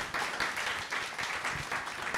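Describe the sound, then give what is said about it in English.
A crowd breaks into a round of applause, dense overlapping hand claps in a steady, sustained patter at moderate volume with no voices standing out. “Give yourselves a round of applause for contributing to our select 11.”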